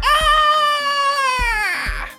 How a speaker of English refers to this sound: You, out of the corner of your eye, as you turn the corner, see a creature that looks like this, and coming from the course you hear a blood-curdling scream.